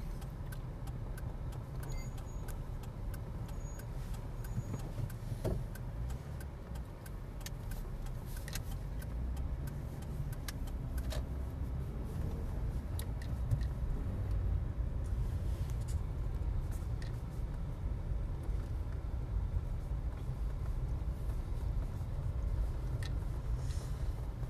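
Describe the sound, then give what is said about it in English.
Steady low rumble of a car interior while driving slowly in slow traffic back from Sainsbury's, crossing over the North Sheen railway line; engine and road noise continuous with occasional small clicks and rattles, no talking. “Driving back from Sainsburys”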